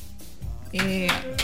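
One person claps their hands twice, sharply, about a third of a second apart, mid-loud, over a steady tonal hum or voice-like sound that fills the gap between them.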